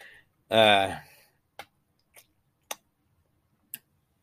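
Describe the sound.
Someone sips cold water: a short voiced gulp, then four soft, sparse mouth clicks spaced about a second apart amid quiet.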